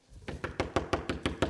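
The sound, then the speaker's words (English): Rapid, forceful pounding on a door after a fire alarm went off, about eight heavy thuds in a steady quick rhythm, loud and insistent with no voices. “The fire alarm finally turned off, and we heard somebody pounding on our door, because apparently they have zones with the fire alarm and where it started.”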